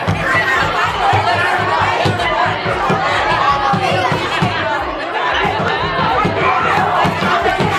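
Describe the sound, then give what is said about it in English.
A packed cafeteria roars with a constant wall of overlapping voices, a big crowd of people shouting, yelling and laughing over each other, loud and unbroken for several seconds. “We're just gonna listen to the screams of a bunch of people right now in the cafeteria.”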